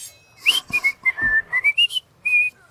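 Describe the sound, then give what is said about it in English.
A person whistles a short, lively tune of quick rising and falling notes with a few brief pauses, clear, with no talking. “And you whistle away.”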